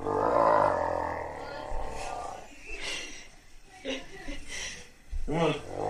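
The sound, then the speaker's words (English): A dog lets out a long, loud, rumbling growl as its owner tries to move it off a bed, followed by a few shorter grumbling growls and snorts with brief pauses between them. “He's trying to move his dog off the bed.”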